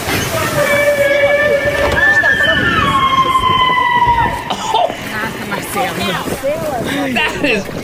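A whale squeals during a breach in long, harmonic tones that hold steady and then glide downward over several seconds, riding on a constant wash of sloshing water and rumbling noise.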